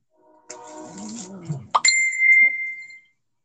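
A phone notification chime rings out once, bright and clear, its tone ringing on for about a second before fading. A short stretch of indistinct voice comes just before it.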